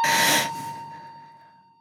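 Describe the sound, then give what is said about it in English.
A fire alarm sounds during a test: a steady, thin high-pitched electronic tone holds throughout, opening with a loud burst of harsh hiss that quickly fades, the whole sound gradually dying away with no talking. “That might be a fire alarm.”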